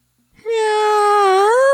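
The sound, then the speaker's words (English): A person voices one long, drawn-out imitation of a cat's meow, fairly loud, holding a steady pitch that bends upward at the very end, with no other talking. “So … gave us this for his kitty cat meow.”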